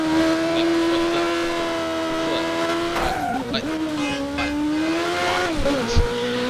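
A steady, loud car engine in a video game drones with strong harmonic tones, then wavers and shifts pitch around the middle, with a sharp thud near the end as the car crashes, continuous.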